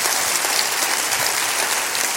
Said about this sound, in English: Come on, clap your hands.